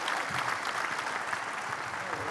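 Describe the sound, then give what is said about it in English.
A church audience applauds in a steady, dense wash of clapping that holds at an even, moderately loud level for the whole couple of seconds, with no individual claps standing out. “Give it up for Lee as well, Lee and Mark.”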